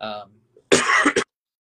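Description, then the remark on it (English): A short voiced sound, then a quick burst of two or three harsh, raspy coughs, loud and clustered together before stopping abruptly. “I've got trying to have a coughing fit over here.”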